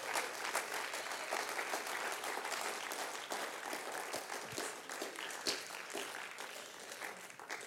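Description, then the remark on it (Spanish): Sustained applause from a crowd, a dense, steady wash of many hands clapping at once that holds at an even level for several seconds with no voices standing out. “No me dejes aplaudiendo a esa gente sola, por favor.”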